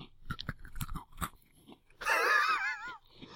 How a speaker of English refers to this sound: He just took the one in the pocky and just munched it all into his mouth.